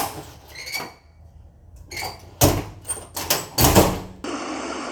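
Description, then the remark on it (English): The door of a big house creaks open slowly at night during a storm, with drawn-out, squeaky groans, followed by a few heavier knocks and scrapes as it swings, ending in a steady low hiss. Fairly loud, no voices. “After a few minutes, the door creaks.”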